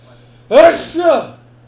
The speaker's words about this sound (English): Bless you.